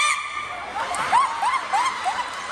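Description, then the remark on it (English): A person imitates a chicken, making four or five short clucking calls in a steady rhythm, moderately loud with faint background noise. “So I was just saying, looking back, I could definitely be a chicken.”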